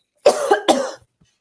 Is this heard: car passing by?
no